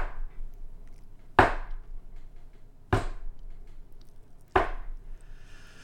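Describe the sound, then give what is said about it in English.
Three heavy axe blows thud into wood at a steady, unhurried pace, each sharp crack ringing briefly before fading, loud against a quiet outdoor background. “So imagine Isaac and Sarah at the breakfast table and Abraham chopping wood out back.”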